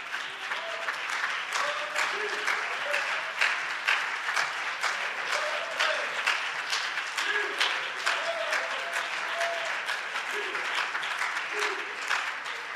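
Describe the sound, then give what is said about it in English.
An audience claps hands in praise to Jesus after an opening prayer, a dense, steady stream of overlapping claps lasting throughout, with faint voices murmuring underneath. “Let's give a hand clap of praise to Jesus.”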